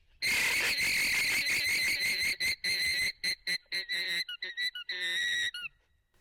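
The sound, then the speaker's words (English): An alpaca's alarm call: a loud, shrill, high-pitched squealing cry pulsing rapidly for several seconds, then breaking into short choppy bursts before one last surge. No voices. “This is the alarm call of an alpaca.”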